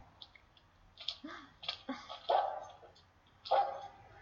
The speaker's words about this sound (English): I want you to stay away from that dog. He could be dangerous. Oh, Brandon wouldn't hurt a flea.